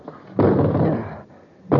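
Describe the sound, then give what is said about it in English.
A metal chair slams hard against an unbreakable window made of electroplast twice, in an attempt to smash through it, the first blow a loud crash with a rumbling ring that fades out, the second striking abruptly at the very end. “It isn't very big, but I think if we smashed it, we could get through. This metal chair ought to do the trick.”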